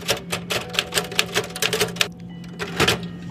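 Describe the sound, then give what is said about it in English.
A manual typewriter in the Smith archives clacks out a quick, uneven burst of about a dozen sharp, crisp keystrokes, pauses briefly, then strikes a few more keys over a faint steady hum. “So when I saw a nice stack of it in the Smith archives right next to her typewriter, I couldn't resist asking.”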